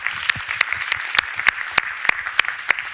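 A round of applause: a steady, even-paced run of sharp claps about three per second, standing out over a continuous hissy wash of many hands clapping, with no voices.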